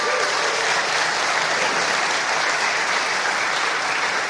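An audience claps steadily and loudly, a dense wash of many hands applauding without pause for several seconds, with no voices standing out.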